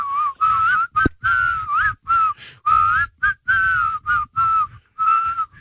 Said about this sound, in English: It's pretty good on the spot. I mean, can you whistle through your teeth like that?